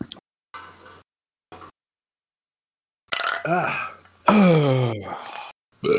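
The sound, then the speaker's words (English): A couple of loud, drawn-out burps into the microphone after drinking a Boilermaker of a shot of Jameson and about three quarters of a pint of Strongbow dry cider, each rumbling and wavering in pitch, preceded by a few short, soft breathy noises and pauses. “I've burped into the microphone, so I think we're ready to kick things off.”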